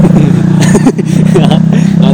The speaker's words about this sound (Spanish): ¡Pinche moto!